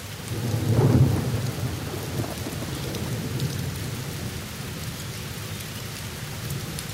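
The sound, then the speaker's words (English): A low, rumbling roll of thunder swells early and fades over steady, hissing rainfall that continues throughout, with no voices present. “Singapore has a lot of thunderstorm days, almost every other day.”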